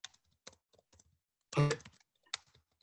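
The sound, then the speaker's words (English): Irregular clicking of computer keys as a participant in an online call types his question after his connection cut out, with a brief louder clatter of rapid keystrokes in the middle; no voices present. “Yeah, he's typing.”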